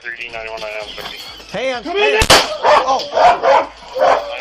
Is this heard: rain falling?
no